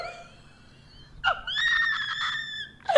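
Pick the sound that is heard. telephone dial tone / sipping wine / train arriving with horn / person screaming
person screaming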